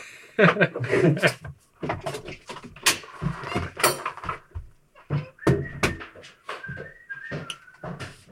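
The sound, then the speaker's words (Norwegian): Scraping, knocking and rattling as the handleless door of a rehearsal room is prised open with a knife, with a few short squeaks near the end and muffled voices in between. “så han har ikke dørhåndtak på døra på øvingsrommet sitt, så han må bruke en kniv for å få det opp.”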